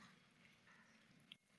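Many Bible pages rustle and turn at once as listeners turn to Psalm 101, a soft, diffuse papery shuffling spread across a room, faint, with one brief sharper click near the end and no talking.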